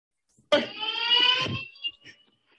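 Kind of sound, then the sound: signal or alarm, alarm going off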